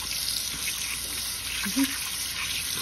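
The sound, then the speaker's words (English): Tepid tap water runs steadily into a bowl, a continuous soft rushing hiss with a brief low knock partway through. No one speaks. “All right, just a little bit of tepid water, because we don't want to burn your hands at this point.”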